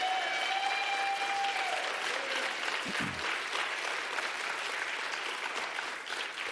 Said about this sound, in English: All right, so when I count to three, let's just give them a hand clap and let them know we love them and care for them. Ready? 1, 2, 3, come on.